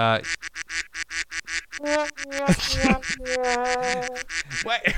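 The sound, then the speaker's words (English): A duck quacking sound effect plays loudly and rapidly from a Discord server soundboard, a burst of repeated nasal quacks in quick succession, with overlapping honking calls in the middle and no talking. “I just hear ducks.”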